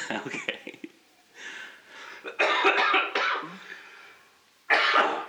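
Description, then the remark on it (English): A person wearing a mask at a radio station coughs several times in harsh, loud bursts, a pair close together and then another after a short pause, following a moment of muffled voice at the start. “As I cough, just to remind everyone, we are social distancing right now and wearing masks.”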